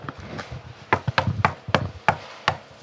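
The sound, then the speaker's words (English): Loud knocking on the door of a house in Los Angeles: a series of about seven sharp, hollow raps in an uneven rhythm, each one clear and punchy, with no voices. “Please knock loudly.”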